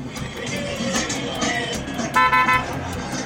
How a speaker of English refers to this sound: Everybody in Peru honks all the time. They honk when they're happy, they honk when they'd like to get by you, they honk when they're angry. Just anytime you want.